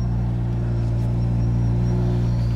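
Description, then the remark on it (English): A car engine rumbles, a deep, steady idle with a low throbbing hum that holds even and loud throughout, with no voices, as the driver gets the car going. “You got your seatbelt on. Get this thing going here.”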